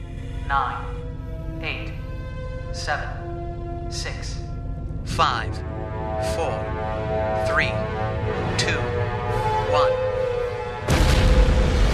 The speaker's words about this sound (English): That's a nice big explosion. You complained about the last Naquadah explosion. It's suddenly daylight again.